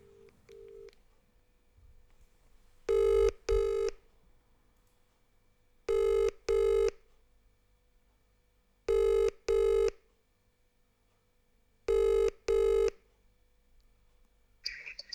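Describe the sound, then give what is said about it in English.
An outgoing charity call's ringback tone purrs in four evenly spaced double rings, each pair about three seconds apart, clear with quiet gaps between and no one speaking. “probably not going to fucking pick her phone up. But we'll give her a go.”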